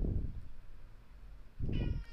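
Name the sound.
cat yelling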